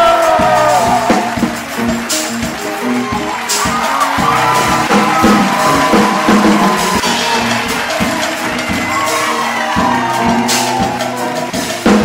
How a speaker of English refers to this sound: Start clapping right now for Mr. Karlous Miller.